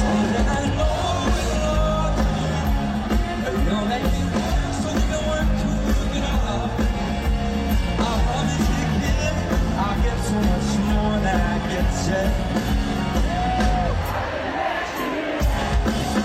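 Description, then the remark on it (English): A packed rock concert crowd at the Outside Lands festival sings along loudly with a full band during a headlining set, voices and instruments blending into a steady roar, with cheers rising and a brief dip in the low end near the finish. “And the crowd knew the lyrics.”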